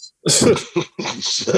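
coughing

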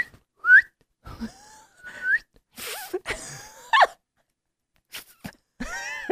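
attempted whistling

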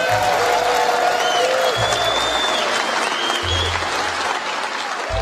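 audience applause

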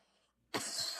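cough

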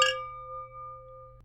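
champagne glasses clinking

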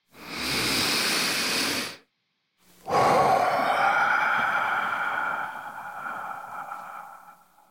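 deep breath

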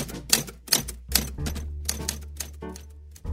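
typewriter typing

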